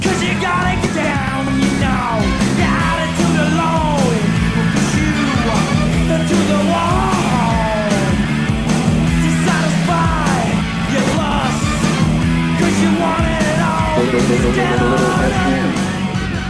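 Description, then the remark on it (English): A rock song plays from a 1987 Virgin Records vinyl album that was pressed without a center hole, so fans had to drill their own. It is loud and dense throughout, with shouted, yelling vocals over a driving band and a steady heavy low end. “Let's have a listen to this record.”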